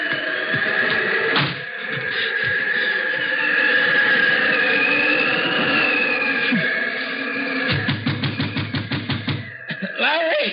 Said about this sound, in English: I went around to the back trying to get away from the wind, but it wasn't any good. There wasn't anywhere to get away from it.